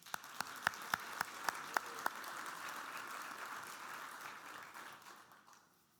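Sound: audience clapping hands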